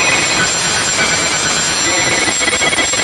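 Loud, continuous telephone ringing fills the whole stretch, dense and relentless, as if several phones are ringing at once with no pauses between rings. It is the speaker's phone before using the Calljoy service.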